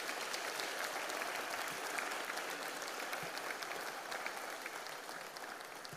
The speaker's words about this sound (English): Well, what a joy that was. Can we give them another cheer, round of applause to our candidates?